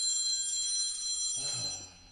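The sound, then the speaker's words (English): A telephone rings with a bright, continuous electronic trill, steady, then breaks off near the end as a low muffled rumble takes over; it is an automated call from the local utility Con Edison (Consolidated Edison). “Ladies and gentlemen, boys and girls, kids and kittens, I forgot to silence my phone.”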